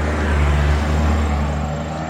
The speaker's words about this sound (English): Sorry, we got a traffic jam here. Come on.